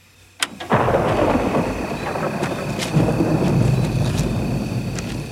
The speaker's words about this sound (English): Of course, I love how we're hearing the thunder crash, the lightning, the tensions rising, the storms coming. Yeah. It builds up to a great moment.